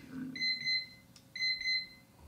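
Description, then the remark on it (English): An electronic alarm clock beeps in two quick bursts, each a cluster of rapid high-pitched tones repeating about once a second, clear over a faint low background hum. “Hold on, your alarm went off 1 minute earlier than mine.”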